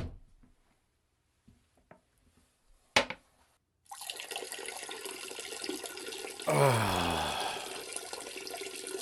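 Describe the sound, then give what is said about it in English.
A few soft clicks and one sharp snap, then a steady trickling stream of urine, followed by a louder rushing toilet flush that swirls and gurgles until the end. “Jesus, I gotta take a piss. I'll be right back.”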